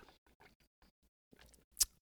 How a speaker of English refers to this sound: I'm gonna have a sip of my drink. I'm gonna let y'all listen to it too.